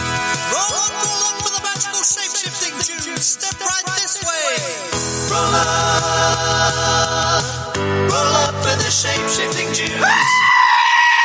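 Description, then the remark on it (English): A goat lets out a series of loud, wavering screams and bleats, strained, one cry after another with harsh, raspy edges and no talking. “We'll give you a goat scream.”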